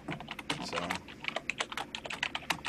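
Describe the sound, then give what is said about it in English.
Rapid, irregular clicking of computer keys being typed on, fairly clear, with bursts of keystrokes and brief pauses throughout. “Sorry, I was typing.”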